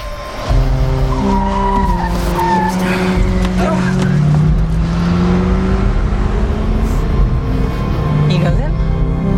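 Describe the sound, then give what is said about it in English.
A car engine roars loudly and steadily throughout, its pitch rising and falling as it revs while the car drives and passes a van, with faint tire noise in the mix. “Just passed the van.”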